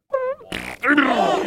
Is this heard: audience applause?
no